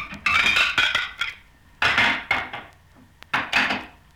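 Two ceramic saucers clink and clatter as they are set down with cups while making a pot of tea, a handful of sharp, ringing knocks arriving in small uneven groups with brief quiet gaps between. No one speaks.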